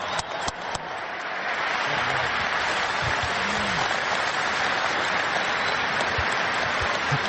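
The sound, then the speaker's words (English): A large audience claps steadily and loudly, a dense wash of applause that swells in the first second and then holds at full strength throughout, with no one speaking over it. “So I think all you guys owe this one a round of applause too.”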